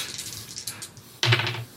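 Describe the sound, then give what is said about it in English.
Dice rolled for damage in a game rattle and click across a hard tabletop, a string of light taps followed by a louder, fuller clatter near the end as they tumble and settle. “Let's explode some roll, dice. Roll that damage, you lucky, lucky bastard.”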